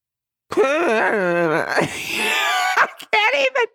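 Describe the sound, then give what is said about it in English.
A voice imitates a strange moaning, squeaky noise: a wavering, whiny wail that slides in pitch for about two seconds, then a breathy rasp and a couple of short squeaky bursts, loud. “I can't even recreate it, but it was this moany, weird, squeaky, weird noise.”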